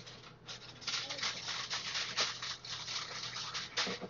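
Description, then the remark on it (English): Aluminum foil crinkles and crackles continuously in bright, dense bursts of rustling that swell and fade over a few seconds, loud and sharp with no talking. “Do you throw this aluminum foil away? Yeah. Okay, I'm gonna use it.”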